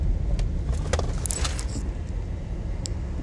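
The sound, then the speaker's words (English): A car engine rumbles low and steady as the vehicle pulls up and comes to a halt at a doctor's office, with a few faint metallic clinks and rattles scattered over the idle. “Finally, he was at the doctor's office. He pulled up.”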